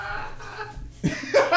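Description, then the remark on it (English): A sharp cough-like burst breaks out partway through, followed by a second bright, rough burst, with faint background murmur beforehand and no clear speech. “Hey, that's like, hey, a sneeze or a cough”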